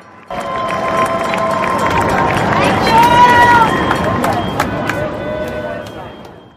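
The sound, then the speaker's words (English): A crowd outdoors cheers for healthcare providers at 7 o'clock at night in a loud, steady roar for about six seconds, with sharp claps and a few high whistle-like tones rising above the din before it cuts off. “You can see everybody's cheering for healthcare providers.”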